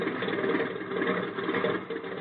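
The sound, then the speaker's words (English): A steady, low aircraft engine drone hums continuously as the plane turns around and taxis, with a slightly rough, throbbing texture and no voices. “Hey, you're turning the plane around. Certainly. Now we taxi.”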